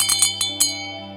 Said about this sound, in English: You know, when you jingle a bell, the bell will sound. This is it.